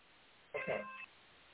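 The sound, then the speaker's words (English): A phone gives a single short electronic beep, about half a second long, with a slightly shifting buzzy tone, heard up close against a quiet background. “It's the phone.”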